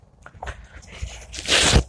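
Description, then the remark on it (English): Soft thumps and fabric rustling as a microphone is moved aside outdoors at a house, followed by a loud, rasping burst as a sweater is zipped up, with no talking. “I think I'll move this microphone a little bit so I can zip up my sweater.”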